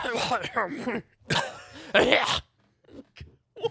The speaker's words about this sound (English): What's that? That's the cough that I have.